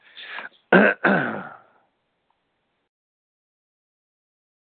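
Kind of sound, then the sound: human body sound, throat clearing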